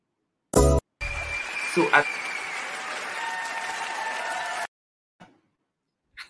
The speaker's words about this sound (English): I had to give you a round of applause for that because, yeah, my audience loved your comment because I think you just hit the nail right on the head.